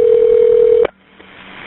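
A single steady ringback tone over a phone line as a campus police dispatcher places a call, loud, lasting under a second, then cutting off into quiet line hiss as the call connects, ending with a soft click.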